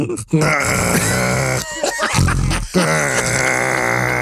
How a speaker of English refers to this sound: I snore, but my wife snores too.